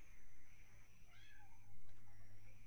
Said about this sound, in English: You have a cat meowing. Can you please move the cat?